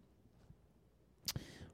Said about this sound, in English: Ring that bell, Shelby.